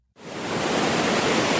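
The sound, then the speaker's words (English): A steady, broad wash of surf noise starts abruptly after a brief silence and holds loud and even, like waves rolling onto a shore at Pearl Harbor in Hawaii, with no voices. “As the waves rolled in, December 7th, 1941, began quiet and beautiful at Pearl Harbor in Hawaii.”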